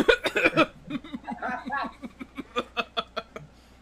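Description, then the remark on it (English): A fit of harsh, choking coughs while eating pizza: a few loud, raspy bursts at first, then a rapid string of shorter hacking gasps that gradually weaken and trail off. “I'm about to choke shit.”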